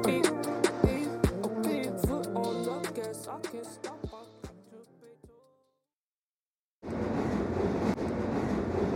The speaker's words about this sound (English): and I'm on a train in Manhattan.